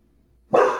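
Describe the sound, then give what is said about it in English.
A single sharp dog bark breaks the quiet, loud, with no voices around it; a background-noise suppression tool does not filter it out. “And the dog, does it shut the dog off? No, it does not shut the dog off, unfortunately.”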